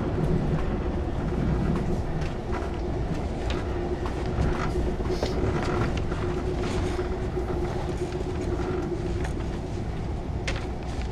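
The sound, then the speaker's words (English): A steady, loud low-frequency rumble fills the inside of a moving train carriage, with faint rattles and clicks scattered over the continuous drone and no voices. “he and Allie are on a train.”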